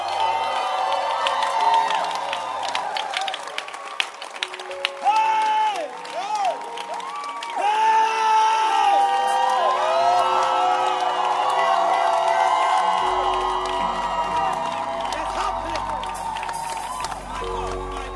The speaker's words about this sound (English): Can you clap your hands?